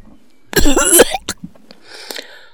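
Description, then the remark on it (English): A loud, raspy fit of coughing and throat clearing, one long strained burst followed by a sharp shorter cough, then quieter rustling breaths. “I fear if someone engaged you in conversation, you'd cough yourself silly before getting to the end of the first sentence.”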